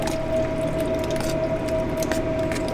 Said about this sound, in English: Juan adds a large can of jalapenos to the pot to give his soup bean some heat.